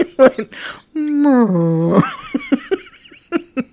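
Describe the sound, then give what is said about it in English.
A voice imitates the creaky, whale-like groan of a chair kicked back in a quiet movie theater: one drawn-out, low moan that dips and wavers for about a second, with brief bursts of laughter and chatter just before and after. “It made like a whale noise.”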